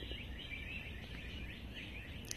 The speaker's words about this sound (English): Again, I encourage you to listen to the sound of the birds.